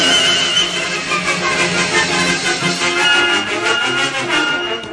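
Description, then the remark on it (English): A loud, drawn-out horse whinny with a shrill, quavering tone fills the whole stretch, with no talking over it. “Grandpa, yonder comes a masked man riding a horse, and a cow riding an Indian.”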